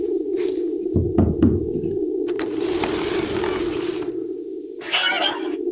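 A quick cluster of about four knocks on a door, knocking to be let in by a security guard, over a steady low mechanical hum, followed by longer stretches of scraping, rustling noise. No one speaks.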